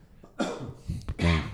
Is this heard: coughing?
yes